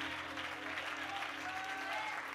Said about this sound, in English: Why don't you clap your hands and give praise to God if you believe it? Come on, praise him.